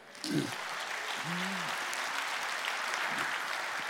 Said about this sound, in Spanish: Un aplauso.